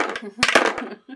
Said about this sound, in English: Do we want to roll some dice? Yes, yeah. Please. All right. I'm going to take your yellow dice.